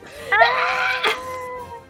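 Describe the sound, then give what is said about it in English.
A voice imitates a panicked scream: one loud, high-pitched cry that rises sharply, wavers, and trails off over about a second and a half, with no other sounds. “You're grabbing onto the saddle and realizing you're just kind of along for the ride, and you just hear OJ scream.”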